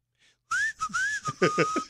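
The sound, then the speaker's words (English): A person whistles between their two teeth, a sharp, airy, wavering tone that rises and dips for a couple of seconds with breathy hiss around it, fairly loud. “No, I have to whistle has, between my two teeth.”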